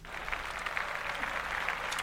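A brief, steady patter of clapping, dense and crackly with no clear individual beats, heard on its own without any voices.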